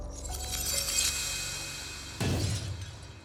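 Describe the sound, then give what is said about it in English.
A crystal struck by a bullet shatters and bursts apart with a bright, glittering crash, then a second heavier explosive impact follows near the end, booming low and scattering fragments. Loud, no voices. “As the bullet hits, it hits the other bullet that is wedged inside, and the crystal just shatters and explodes.”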